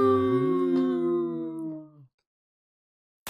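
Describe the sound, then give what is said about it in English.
A single long wolf howl, imitated by a human voice, starts low, rises and holds a steady tone for about two seconds before cutting off, followed by silence and a brief click. “A wolf.”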